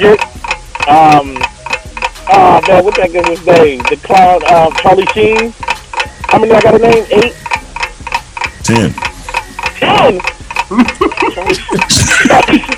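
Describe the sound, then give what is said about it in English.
A steady, rapid ticking like a 30-second countdown clock runs throughout, with voices talking over it and a brief brighter burst near the end. “You have 30 seconds to name 10 celebrities who have HIV or AIDS, dead or alive.”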